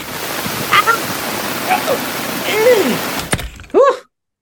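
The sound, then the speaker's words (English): Loud, steady rain from a storm, heard through an open door, roars as a dense hiss for about three seconds, with a few short chirping calls above it, then a sharp thump cuts it off into sudden silence. “I guess it's raining.”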